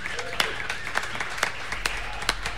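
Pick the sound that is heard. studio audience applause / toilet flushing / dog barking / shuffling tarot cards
studio audience applause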